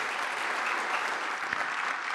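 An audience applauds steadily, a dense, even wash of many hands clapping at once that holds at a constant moderate level throughout, with no voices rising above it.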